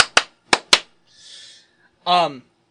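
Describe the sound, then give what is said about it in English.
Four sharp hand claps in two quick pairs, given as a clap sign to mark a recording, followed by a soft breathy hiss and then a short voiced vocal sound. “So I'm going to give the clap of the clap sign for the podcast.”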